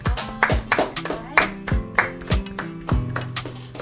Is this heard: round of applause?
yes